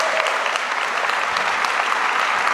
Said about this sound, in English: So we honor them today. One more time, can you clap your hands for them all over the room?